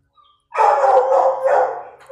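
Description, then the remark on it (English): A dog gives a faint, brief whimper, then breaks into a loud, sustained howling whine that wavers in pitch for well over a second before trailing off. “Yeah, he did a little whimper.”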